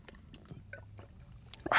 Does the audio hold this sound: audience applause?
no